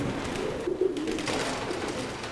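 Pigeons up in the rafters of a farm storage building with a dirt floor, once a ballroom on the Midwest prairie, coo in low, throaty murmurs, a few soft calls rising over a steady hollow background, with faint bursts of wing flapping mixed in.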